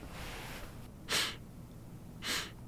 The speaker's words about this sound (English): Are you sniffing the inside of your pocket? Of course not, sir.